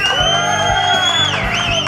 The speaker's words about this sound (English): Good cheering.